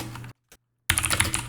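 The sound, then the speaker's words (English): Rapid, clacky typing on a mechanical keyboard as a man looks something up, fairly loud, broken by a brief pause with a single faint tap before the fast keystrokes resume. “This man has a mechanical keyboard.”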